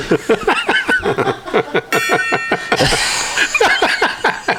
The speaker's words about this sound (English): The gong ties the room together. That gong really tied the room together.